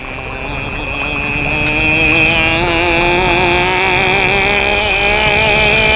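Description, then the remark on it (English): A throaty voice imitates a motorcycle engine, a loud, buzzing drone that revs up slightly and holds steady for several seconds, with no other talking. “Just make a motorcycle sound.”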